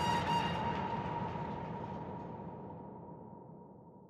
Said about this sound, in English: On that summer solstice, sun setting late, the last Soviet supply train trundles west to Germany, laden with grain.